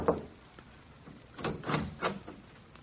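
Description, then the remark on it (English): Three evenly spaced knocks on an apartment door late at night, moderately loud, follow a brief soft thump and a quiet pause. No one speaks. “I knocked on the apartment door.”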